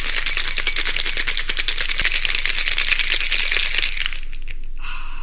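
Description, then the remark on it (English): A cocktail shaker is shaken hard in a home kitchen to mix a Naked and Famous cocktail, ice rattling in a fast, steady, bright clatter for about four seconds before stopping abruptly, followed by a faint steady tone. No one speaks. “Without further ado, I think it's time for us to go into our isolation kitchens and shake up a storm.”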